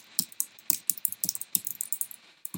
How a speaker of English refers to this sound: Some ASMR activity taps on the keyboard there.